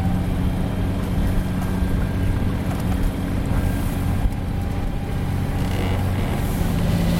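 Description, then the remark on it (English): A small boat's motor drones steadily, a constant low hum with a rushing wash of water and wind noise over it, and nobody speaking, as the boat moves through Docky Sound against a very strong tidal current that nearly pushes it backwards; the winds are gentle. “The tides are very, very strong. Nearly pushing us backwards now.”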